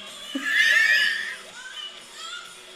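A woman lets out a loud, shrill, piercing scream lasting about a second while doing cartwheels, then trails off into fainter, brief vocal sounds in the background.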